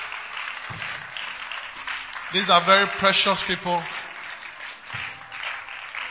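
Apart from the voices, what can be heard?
audience clapping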